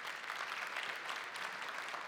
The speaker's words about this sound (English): Come on, give the Lord a hand clap right now. Come on.